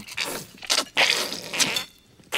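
Ketchup squirting from a squeeze bottle at a dinner, in a series of wet, sputtering squelches and hissy spurts, four or five uneven bursts with brief pauses between them, with no talking.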